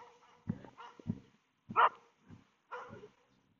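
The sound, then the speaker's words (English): A passing dog barks and yelps in a quick, irregular string of about five sharp calls, one louder yelp standing out in the middle, with quiet gaps between and no talking. “I'll go on the side street here, giving it time for the dog to pass, so I won't have this yelping dog getting in the way of my recording.”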